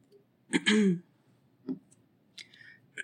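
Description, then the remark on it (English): A quiet sip of water: a short throaty gulp followed by a few soft, scattered swallowing clicks and mouth noises. No one speaks. “Let me grab a drink of water here.”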